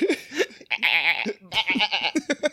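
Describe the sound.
A person loudly imitates a goat, letting out a few quavering, nasal bleats, one long wavering cry followed by a choppy run of shorter ones.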